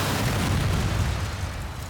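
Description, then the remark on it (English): A loud, deep explosion of a bomb in a police officer's vehicle in Macau in 1998 fills the whole moment, a heavy rumbling blast with a broad roar that carries on for a couple of seconds before easing slightly. No voices. “On September 8, 1998, a bomb went off in a police officer's vehicle in Macau.”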